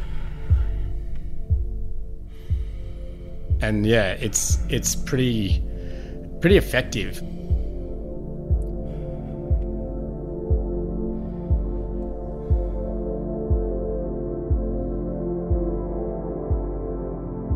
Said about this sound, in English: When I listen to this song, it makes me feel like I'm putting on like a warm weighted blanket. It's a really calming song. It's ambient. It's pretty.